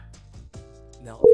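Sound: telephone dialing tones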